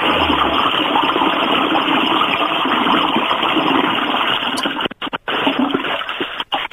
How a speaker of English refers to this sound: That's one hell of a flush.